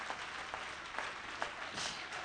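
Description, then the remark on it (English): An audience claps their hands in praise of the Lord at a preacher's call, a steady, dense burst of applause, many hands overlapping into a continuous crackle with a few sharper claps standing out. “Clap your hands with me.”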